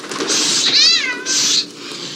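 A cat lets out a loud, drawn-out meow with a wavering, rising-and-falling pitch, followed by a shorter second yowl, clear with no talking.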